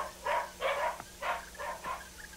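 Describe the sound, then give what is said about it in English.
Lord Godalming's three dogs, outside in the garden, yelp and bark in answer to his whistle in a quick run of about five sharp, excited bursts, with no voices. “It was answered by the yelping of his three dogs from outside in the garden. And their happy barks restored our spirits as they dashed in and forced the rats into a retreat.”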